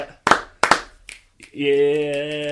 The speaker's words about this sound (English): I mean, let's just give a round of applause for Loren Ross. Gotta love it.